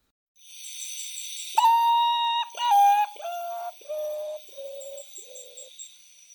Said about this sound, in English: I think the sound for that bird is just as creepy as the way that bird looks. That melancholy sound comes from the common potu. So the common potu is found in Central and South America and is a large bird designed to look like a log.